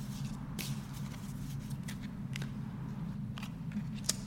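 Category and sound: household object, tarot cards being shuffled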